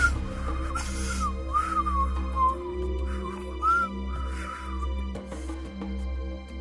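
person whistling casually

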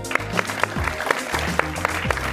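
audience applause

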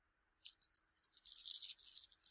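dice being rolled

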